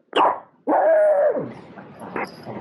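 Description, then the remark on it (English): A small Shih Tzu dog barks: one sharp yap, then a longer, drawn-out bark that trails into a whiny tail, followed by quieter fidgeting sounds. No one speaks. “This is our dogs giving us the slowdown.”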